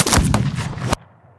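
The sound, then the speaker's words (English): The final gunshot of a duel: a loud, layered blast fills the air for nearly a second with several rolling cracks, then cuts off into a faint low rumble of echo. “One thing to know about that final duel is that the final gunshot is rather shocking, both in its volume and scale and its kind of complexity.”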